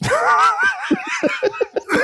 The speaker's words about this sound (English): That's a good joke because it made him cough really at the end.